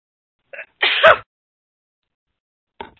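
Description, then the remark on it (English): A single loud sneeze, preceded by a quick sharp intake of breath, then silence before a brief breathy sound at the end. “Or just, I'm going to sneeze.”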